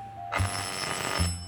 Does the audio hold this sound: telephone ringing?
yes